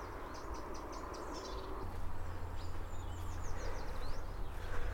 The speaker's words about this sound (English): Oh. And that's a wren clicking away.